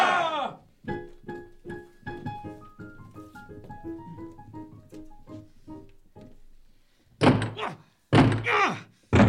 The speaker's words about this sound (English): Oh, no, the door won't budge.